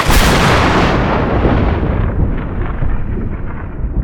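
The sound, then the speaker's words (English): A loud, sharp thunderclap bursts out at once, its crackling high edge fading over the first couple of seconds into a deep, heavy rumble that rolls on steadily to the end. “Millicent's voice again rang with a clap of thunder and a concussive force that sent many of Adeline's forces sprawling to the ground, effectively ending the battle.”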